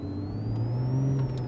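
A car engine hums steadily, its pitch climbing slightly as it picks up speed, with a faint whine above the low drone and no voices.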